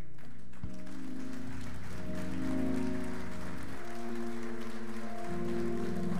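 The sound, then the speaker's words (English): An audience applauds the mothers standing to be recognized on Mother's Day, steadily for several seconds, a dense, continuous clatter of many hands, while sustained keyboard or organ chords play underneath. “I want you to stand so we can recognize you and applaud you.”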